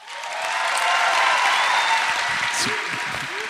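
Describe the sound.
An audience claps steadily for a few seconds, a dense wash of many hands that swells and then slowly fades, with faint voices and a brief cheer mixed in near the end.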